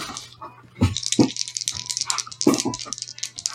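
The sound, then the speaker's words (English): Dice, including a four-sided die, clatter and roll across a hard surface during a tabletop game, with a few sharp, louder knocks among a busy stream of small, bright rattling clicks, alone with no talking. “I'm going to stick a four-sided dice here.”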